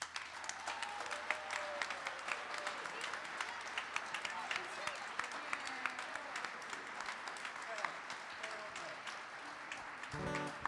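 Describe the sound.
A concert audience at a band show gives a birthday round of applause for about ten seconds, a dense, steady wash of many hands clapping, with scattered voices mixed in. A low musical tone enters right at the end.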